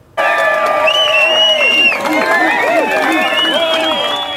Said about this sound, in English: A large crowd gathered for the totem raising in Anchor Park at Main and 3rd Streets in downtown Tofino.